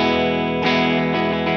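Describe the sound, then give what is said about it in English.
An electric guitar with its resistance switch set to 50 ohms rings out with full, buzzy chords, restruck a few times so each new strum swells over the last one's sustain. It's loud, with no voices. “While we're at it, uh-huh, the resistance in ohms can be set by a switch here that is 50 ohms, 200 ohms, and 500 ohms.”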